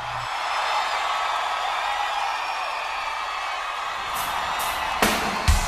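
A loud, steady crowd roar with whoops and cheers from a live rock concert, then a few sharp drum or cymbal hits crash in near the end.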